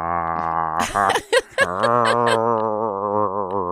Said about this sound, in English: You're gargling my name. I've become a mouthwash. That's the sound my dog makes when we're playing tug of war with a sock.